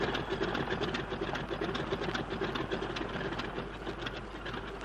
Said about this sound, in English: Don't waste time revving.